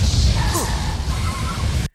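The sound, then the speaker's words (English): A movie explosion on a bridge near the end of the film, during a motorcycle fight scene: a loud, deep, rumbling blast that roars steadily for about two seconds with a crackling, hissing top, then cuts off abruptly. No one speaks. “That was the big explosion on the bridge at the end when they had this motorcycle fight scene.”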